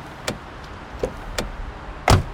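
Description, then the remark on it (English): People getting into a car: car doors clicking and shutting, a few light clunks and latch clicks, then one solid, heavy door slam at the end, with no talking. “All right, get in the car.”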